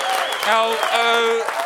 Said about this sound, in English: sitting there and hearing everyone cheering wildly because someone just spent $110 million on a painting